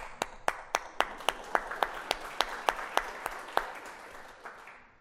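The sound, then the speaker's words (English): A single person claps in a quick, steady rhythm, about a dozen sharp claps, over a softer wash of scattered audience applause that thins and fades out toward the end, at an evening session at a camp. “You heard somebody clapping and you just hopped in.”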